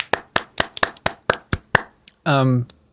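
A lone person claps about eight times in a quick, steady rhythm, then a brief tonal vocal cheer follows; the applause is sparse and modest rather than loud.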